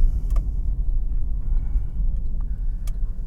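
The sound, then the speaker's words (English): A small car's engine drones steadily while driving up a hill in second gear along a snowy road on snow tires, a continuous low rumble, broken by a couple of brief faint clicks. “Fun little car.”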